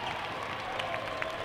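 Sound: basketball crowd cheering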